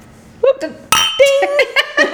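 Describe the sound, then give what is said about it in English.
Wine glasses clink together once in a bright, ringing toast, the tone lingering briefly while voices call out and laugh around it. “Cheers. Cheers to the Dirt Divas.”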